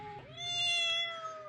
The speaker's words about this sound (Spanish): Poco a poco, comencé a escuchar cómo el maullido del gato se acercaba más y más, hasta que me di cuenta que el gato ya estaba en mi habitación.